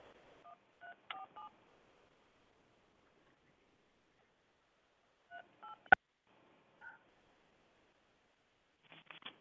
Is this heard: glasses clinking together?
no